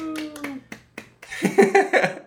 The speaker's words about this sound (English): give a little clap.